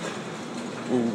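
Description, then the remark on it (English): A train rolls in with a steady rumble and rattle that builds slightly near the end as it comes to a halt, while a voice briefly exclaims over the noise. “Oh shit, I think the train is coming. It just stopped.”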